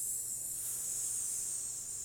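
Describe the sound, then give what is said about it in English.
A steady, high-pitched hiss, heard in a clearing scattered with piles of bones at the end of a trail, runs unbroken for about two seconds at an even, fairly soft level, with no voices or other sounds around it. “Suddenly, you hear a hiss.”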